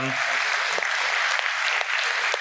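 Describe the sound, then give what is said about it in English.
A crowd claps steadily, a dense, even wash of applause from many hands filling the whole stretch, with a brief low voice right at the start. “I know all of that applause is for her, like, oh, that poor thing.”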